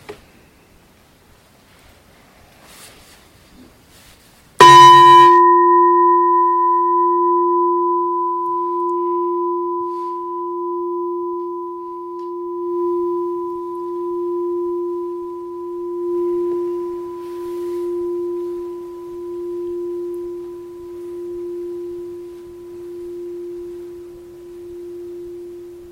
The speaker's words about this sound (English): And we'll start and end with the bell.